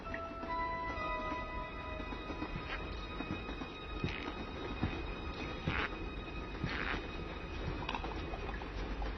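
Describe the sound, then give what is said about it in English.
Train cars roll steadily along the rails with a low, continuous rumble, irregular clacks from the wheels over track joints, and a faint metallic whine running underneath, with no voices. “Yeah, it's a violation of railroad safety regulations for a kid to cross moving cars without a grown-up.”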